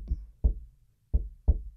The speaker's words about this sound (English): Safe houses had secret knocks.